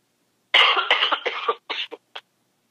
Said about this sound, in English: Cough.